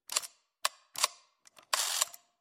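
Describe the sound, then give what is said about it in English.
A big, bulky old video camera that still uses tapes, a few years old, being handled: a few sharp plastic clicks and clunks at irregular intervals, ending in a longer rattling, scraping burst, with no one talking. “This camera's huge!”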